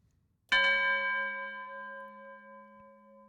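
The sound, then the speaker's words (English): A single bell is struck once, loud, then rings on with a rich, sustained tone that slowly fades away. No one talks over it. “I need to sigh and then do the bell dong thing and we get into the episode.”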